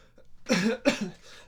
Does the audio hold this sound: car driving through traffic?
no